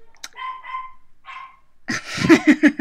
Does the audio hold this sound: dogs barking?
yes